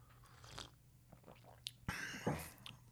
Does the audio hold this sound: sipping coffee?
yes